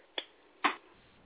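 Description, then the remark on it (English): Two sharp hand claps about half a second apart, each a brief crisp slap with a short tail, on an otherwise quiet background with no talking. “And now we're going to reverse that clap.”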